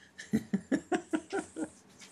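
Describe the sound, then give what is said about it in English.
A dog scratches its neck, its collar jingling and rattling in a quick, steady rhythm of about ten shakes that fade slightly toward the end. “my dog is scratching his neck and rattling his collar for you.”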